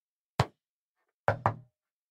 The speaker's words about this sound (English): I would like to communicate back with you only with knocks, only with yes or no responses. Is that okay?